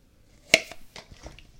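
Someone sips a soda: a sharp clink of the can or glass, then a few soft, wet slurping and swallowing sounds, fairly quiet, with no talking.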